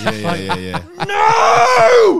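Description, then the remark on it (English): A person lets out a loud, drawn-out scream of alarm, rising then falling in pitch, after a short strained vocal sound. It's sustained, performed as an imitation of screaming. “And I just started screaming.”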